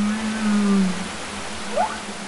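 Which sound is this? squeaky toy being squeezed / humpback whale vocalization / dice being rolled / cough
humpback whale vocalization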